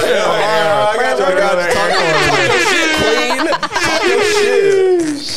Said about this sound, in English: Can I get another air horn?